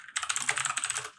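A quick, steady flurry of computer keyboard typing, with dense overlapping key clicks clattering for about a second. No voices are heard.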